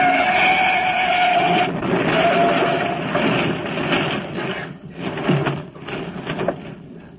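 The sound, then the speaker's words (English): Loud tire screeching with a sustained squeal, giving way to a rough grinding rumble and a few heavy crunching impacts as a truck on the wrong side of the road skids and crashes into a car, smashing its left front fender and headlight, and the truck turns over. “He's on the wrong side of the road. Get over! Get over! Look out! He's heading straight for us!”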